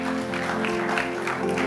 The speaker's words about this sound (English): Is that a clap to God's glory?